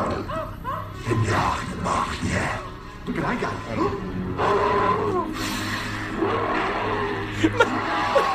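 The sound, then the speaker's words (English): A cat, held up by Brendan Fraser's character, hisses and a mummy screams in a chaotic film scene, with loud crashes and thuds among the shrieks and voices, intense, over a dense background score. “And then the mummy goes, and the cat goes, and then the mummy.”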